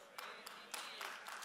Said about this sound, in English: And I thank you for that golf clap. Thank you for that, it's just so nice. Sound like a Sunday afternoon taking a nap, doesn't it? What's that little clap? Oh, that's a golf clap.